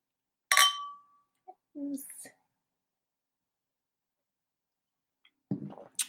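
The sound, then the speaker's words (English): Glasses clink together once in a Valentine's Day toast, a sharp strike that rings briefly before fading, followed by a few softer bumps and murmured, indistinct vocal sounds. “So we're going to give a great toast to start off this Valentine's Day.”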